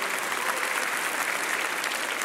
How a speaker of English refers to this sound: How many of you have been praying for him? If you don't know, yes, you can clap. That's a good thing to clap for.